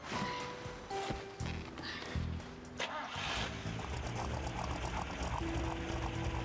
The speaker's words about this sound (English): Why don't you start it up and give us some gas? I'll monitor the diagnostics.